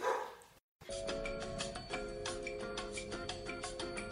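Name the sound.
dogs barking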